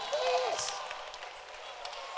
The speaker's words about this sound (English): Except that brother. Clap for him.